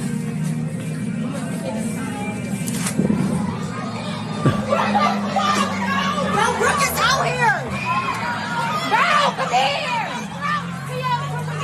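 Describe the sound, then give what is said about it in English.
A rowdy crowd in the parking lot of a Wawa on the Boulevard in Philadelphia, with people running around acting crazy. Loud overlapping shouts and yells rise and fall over a steady babble of many voices and a low rumbling hum throughout. “And the parking lot is just littered with a bunch of degenerates just running around acting crazy.”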